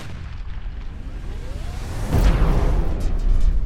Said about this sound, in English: Everyone shield your eyes. The explosion is imminent.